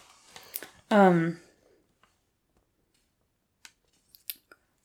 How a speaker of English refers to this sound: Hold on, I'm gonna flip my paper over.